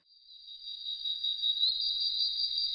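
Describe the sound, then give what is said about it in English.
A steady, high-pitched chorus of tree frogs calling at night in a forest on an island, swelling in over the first second into an unbroken shrill trill that holds constant, with no voices present. “So the sounds of the forest by night are dominated by tree frogs.”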